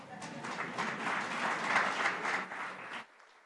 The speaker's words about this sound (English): All right. Let's clap for them.